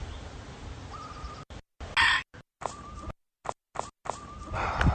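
chickens clucking

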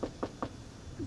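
knocking on wood

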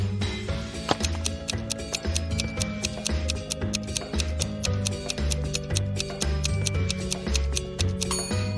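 clock ticking

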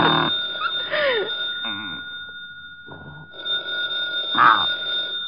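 telephone bell ringing

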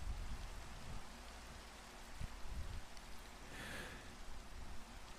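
rain falling

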